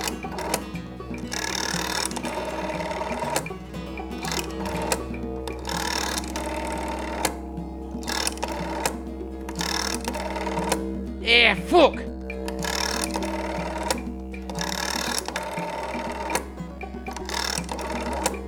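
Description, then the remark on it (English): A rotary dial on a wall-mounted telephone with a corded handset is spun again and again, each turn a burst of mechanical whirring and ratcheting clicks followed by a short pause. A man briefly mutters partway through. “Blimey, that's a slow phone.”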